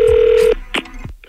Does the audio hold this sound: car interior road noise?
no